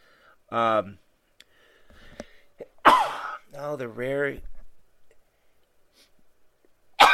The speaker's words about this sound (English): The double sneeze, the rare in-show sneeze, happy season. You know me, when I get coughing and sneezing, it only lasts 6-7 months, so that's pretty cool.